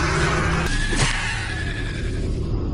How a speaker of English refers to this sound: Davis swerved wildly, trying to shake the monster from his car.